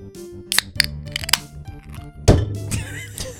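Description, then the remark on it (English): An empty can gets knocked over and clatters onto the floor, a few sharp metallic knocks and rattles followed by a louder crunching hit and a brief rolling rattle. “Just knocked your can off. I mean, it's empty.”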